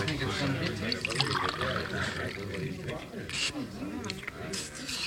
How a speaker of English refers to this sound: Now he's drinking the water. It must be all right, then.